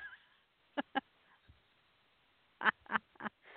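goose honking sound effect

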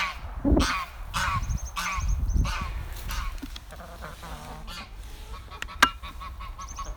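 goose honking

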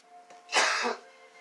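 coughing

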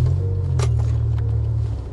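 car driving in traffic

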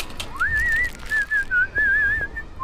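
man whistling a tune

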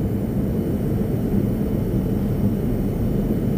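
airplane cabin engine drone

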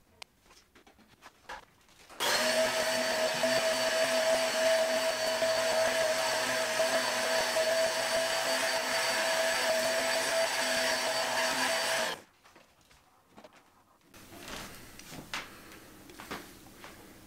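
vacuum cleaner running

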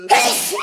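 sneeze

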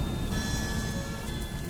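rain

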